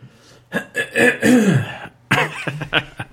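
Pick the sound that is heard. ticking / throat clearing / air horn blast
throat clearing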